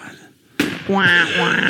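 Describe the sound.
A gunshot sound effect: one sharp, loud gunshot crack bursts out of near-silence, and a voice starts talking over its fading tail.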